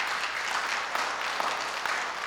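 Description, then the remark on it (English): An audience claps hands to show they like oldies rock and roll. It is a dense, steady patter of many overlapping claps that holds at an even, moderate level throughout, with no one speaking. “How many of you like just good old oldies rock and roll? Clap your hands.”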